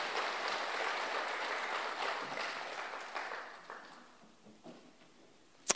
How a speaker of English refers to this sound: Can we just give everyone a clap that took a part in making this morning happen?